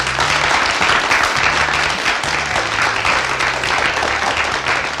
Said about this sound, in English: So can we have a big round of applause